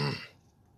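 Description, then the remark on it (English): A single short, rough throat-clearing grunt caused by throat irritation, fairly loud at first, then fading quickly into quiet. No one speaks. “It's just the throat irritation that's causing me to want to cough.”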